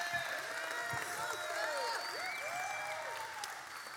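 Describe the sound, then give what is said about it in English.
An audience cheers and claps steadily, a dense wash of applause with rising and falling shouts and whoops layered on top, holding loud for about four seconds before easing slightly. “That's how you cheer Florida State?”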